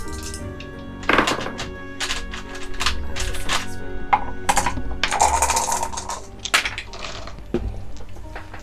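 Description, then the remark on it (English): Six-sided dice, rolled in sets of three during a betting game, clatter and tumble across a hard surface in quick bursts of clicks and knocks, a few separate rolls in a row with no one talking. “So now that you've rolled your first set of dice, you may select.”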